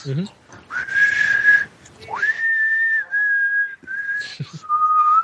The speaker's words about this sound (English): All right, and I walk over there, and I will just whistle.